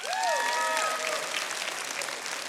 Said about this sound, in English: Did you hear how tired those claps sounded? They could use a nap.